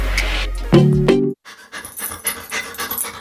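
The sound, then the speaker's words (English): A dog pants in quick, rhythmic breaths, preceded by a short, tonal whine-like vocal sound. No one speaks. “To some, this might sound like a typical family dog.”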